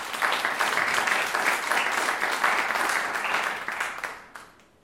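A crowd applauds steadily with dense, even clapping for several seconds, then the applause thins and fades out toward the end.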